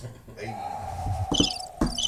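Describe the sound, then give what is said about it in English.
Short bursts of high, shrill cricket chirping, played after a joke falls flat, appear over a low steady hum, broken by a few dull thumps, in an otherwise quiet moment. “Oh, double crickets.”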